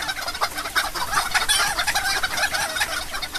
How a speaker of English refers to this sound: Wow. That's a lot of chickens, man.